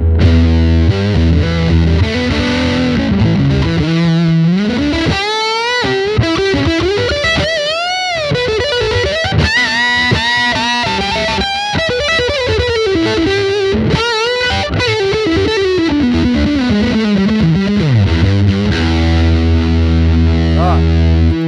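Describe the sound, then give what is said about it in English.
Electric guitar played through a J. Mascis Big Muff fuzz pedal, thick and saturated, with sustained wailing bends and sliding melodic lines over low chugging notes, loud and continuous with no talking. “And then I just got this J. Massis Big Muff.”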